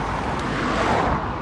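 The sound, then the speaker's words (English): A car rushes past on a road, heard while walking along it, its broad roar swelling briefly to a peak before easing off, with no talking over it. “One issue with having to record a podcast whilst walking along a road is having to watch out for cars.”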